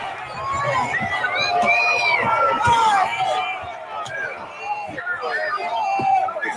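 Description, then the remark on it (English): A crowd of many voices yells and shouts over each other at black bloc protesters to stop, while sharp banging impacts from the protesters smashing windows ring out every second or two, loud throughout. “So we're looking at people in black block trying to smash windows. And the crowd is yelling at them to stop, and people are stepping in to stop them.”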